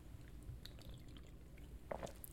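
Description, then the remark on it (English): A close-miked sip of water on a new microphone setup: soft, wet mouth and liquid sounds over a low hum, with a brief slurp and swallow near the end. No one speaks. “Oh, wait, no, he actually said the water sip was worse than the previous beer sips that I've took on my new microphone and my new setup.”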